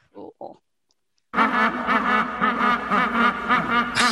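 Penguins make unusual sounds: two short honking calls, then after a brief silence a loud, crowded chorus of overlapping quacking and braying erupts and continues without pause, like a busy colony.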